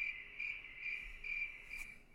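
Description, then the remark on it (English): Crickets chirp steadily in a continuous high-pitched trill, pulsing slightly in rhythm, fairly quiet and unbroken, with no voices or other sounds. “Sound the crickets.”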